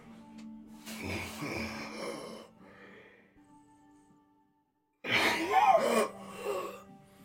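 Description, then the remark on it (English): A voice imitates a man's deep, raspy, labored breathing: two long, rough, wheezing breaths separated by a quiet pause of a few seconds, fairly loud, with no speech. “You would hear his deep, raspy, labored breathing.”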